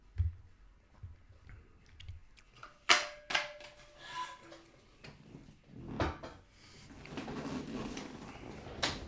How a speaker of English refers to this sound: Not a fart, just a chair, but every time I go back to the times where I think it's a fart, it doesn't ever really even sound like a fart.